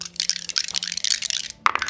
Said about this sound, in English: There's like 8 dice in there he's rolling. You know, yeah, but I'm only, okay, that did roll pretty poorly, so I am impressed.